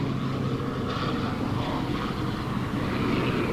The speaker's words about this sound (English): I want to give one more shot here, though. You can see another plane coming through to drop more of that flame retardant on the fire here.